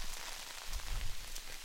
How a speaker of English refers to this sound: What do you think of the rain, sweet dumps? It really is coming down.